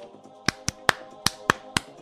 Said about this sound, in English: Now slap your fins together.